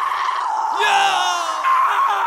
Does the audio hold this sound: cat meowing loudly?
no